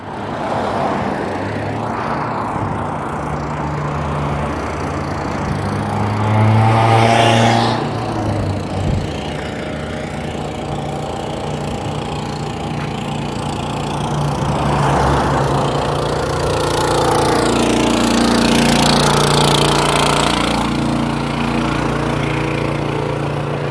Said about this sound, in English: I don't know if he's putting in water or taking out water. That sound, it's like a truck, and it's here every weekend. Well, most weekends.